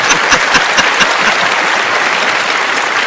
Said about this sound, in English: Where's the guy clapping? He I know, clap. Right? Yeah. Yeah. Yeah, where's our sound person?